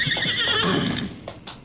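A horse coming fast gives a loud, shrill whinny that wavers and falls in pitch for about a second, followed by two sharp hoof clops. No voices are heard.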